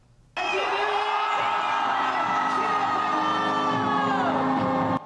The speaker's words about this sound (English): 16,000 fireworks go off together, accompanied by a light show. This was New Year's at Taipei 101 a year ago.